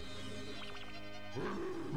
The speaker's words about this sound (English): There's an odd roar from Whiplash here.